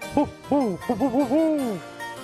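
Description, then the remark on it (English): A run of owl-like hoots, about six quick rising-and-falling notes ending in one longer drawn-out hoot, heard clearly with no talking. “Was that a real owl or a fake owl?”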